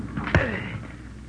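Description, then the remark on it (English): A single heavy sledgehammer blow strikes red-hot objects lying in the dirt with a sharp, loud clang, followed by a brief metallic ringing that fades over about a second. No one speaks. “Oh, hand me the sledge, sir. Yeah. Stand back.”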